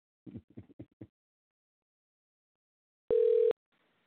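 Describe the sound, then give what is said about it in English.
A single short, loud electronic telephone ring tone sounds on the line as a call is placed to bring a guest on air, a steady buzzy beep lasting under half a second, preceded by a few brief muffled voice-like bursts and then silence. “Y'all gonna hear a bunch of the ringing on the air.”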